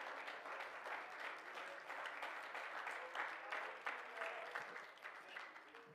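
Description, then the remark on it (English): A crowd of people claps their hands steadily in praise at a church sermon for several seconds, a dense, sustained wash of applause at a fairly even loudness with no talking over it. “Clap your hands and praise Him for it right now.”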